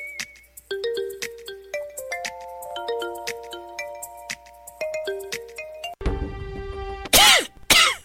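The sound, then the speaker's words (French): A phone ringtone plays a bright electronic melody of stepping, sustained tones for about six seconds, followed by loud, harsh bursts that sound like coughing or throat clearing. “Sou kèz vè k ap sonnen an dan la ti papa?”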